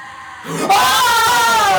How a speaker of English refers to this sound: So first off, as soon as we're done talking and she's like, let's do this, she opens her mouth and screams, but she doesn't just open her mouth. The skin, like, surrounding her mouth flaps open.